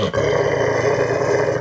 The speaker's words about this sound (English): Yeah, you tell him. You don't like him. He's seething. That's some real angry dog growls.